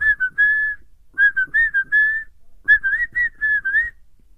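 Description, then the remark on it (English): A person whistles the bouncy intro theme of the TV show The Office, in three short phrases separated by brief pauses, each made of quick rising and falling notes at a steady, clear pitch. “So then we get the intro to the office, classic, and let's see if I can whistle it.”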